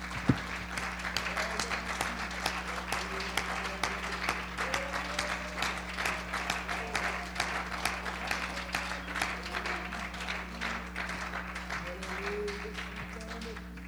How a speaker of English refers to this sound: Praise God. Can we give God a hand clap of praise tonight? Hallelujah.